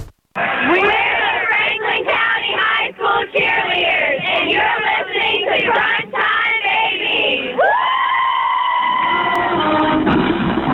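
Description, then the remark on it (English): Cheerleaders cheering: a loud, continuous roar of voices yelling and cheering together, with shouted bursts and rising calls, then a sustained high-pitched cheer that swells near the end. “Love to hear the cheerleaders call us out.”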